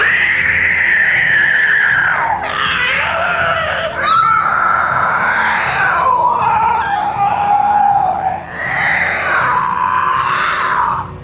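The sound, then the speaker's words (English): A monstrous sea creature shrieks loudly as a knife is driven into its eye and pierces its brain, a long wavering scream that rises and falls in pitch for about eleven seconds, with harsh rasping bursts as it thrashes. “It screamed and thrashed as the knife pierced its brain.”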